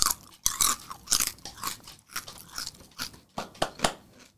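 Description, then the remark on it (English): Crunching of Fritos corn chips, a quick series of crisp, irregular bites and chews that crackle loudly and keep going steadily, with no talking. “Those are Fritos.”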